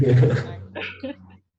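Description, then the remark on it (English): A big female Labrador–Cane Corso mix dog barks: one loud, deep, drawn-out bark followed by two shorter, sharper ones, then quiet. “What kind of dog do you have? Oh, she's a lab mixed with a Corso.”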